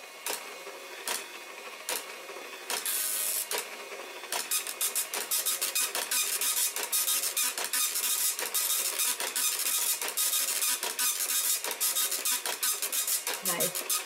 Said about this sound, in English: the sound of the dot matrix printer is ingrained in my head